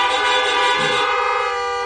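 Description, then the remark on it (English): Several car horns blare together in a sustained, loud honking chorus, overlapping tones holding steady for about two seconds with no voices present, honking a hallelujah in response to a preacher's call. “If you believe that, honk a hallelujah.”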